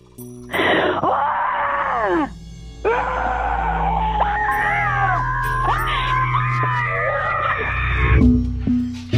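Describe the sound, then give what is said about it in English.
A person lets out a long, raw primal scream in two sustained bursts, loud, the voice straining and wavering in pitch with no words. “This is my primal scream.”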